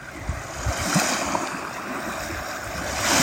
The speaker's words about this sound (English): Taking in the healing sounds of the waves and the cleansing feel of the breeze, the warmth of the sun, just tapping into this abundance of energy.